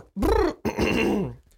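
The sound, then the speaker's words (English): A person lets out a loud, drawn-out yawning groan in two voiced bursts, a performed, exaggerated yawn while stretching, with no other talking. “Yawning and stretching”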